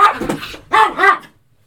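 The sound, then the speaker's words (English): A small dog in an office barks sharply, a quick cluster of high, yappy barks in close succession, loud, then it falls quiet. “This little fucking dog here overreacts and barks at the stupidest shit just to get attention.”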